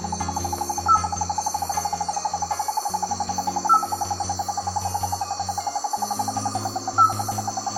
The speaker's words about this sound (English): Pro: the Wallace's flying frog is cute, and the sound of its call is much more pleasant than the sound of a jet engine.